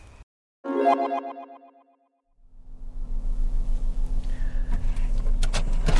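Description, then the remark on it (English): A short electronic chime rings out, then a car engine starts up and settles into a steady low rumble as the car pulls out of a driveway, headed for Stone Mountain on a sunny day of about 70 degrees, with a few faint clicks. “I'm in my car headed out to Stone Mountain. I'm just now leaving my driveway.”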